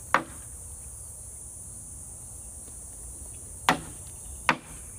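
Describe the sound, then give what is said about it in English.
Cicadas in a bush drone steadily in a high, unbroken buzz that runs the whole time. Three sharp knocks cut through it, one at the start and two close together near the end. “Yeah, if it's not the blackbirds, the great-tailed grackle, then it's the cicadas, you know?”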